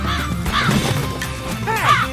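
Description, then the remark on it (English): A crow caws three times in harsh, nasal calls, the last one longer and drawn out, over a steady wash of background noise. “No, Mr. Crow, it's too spicy for you.”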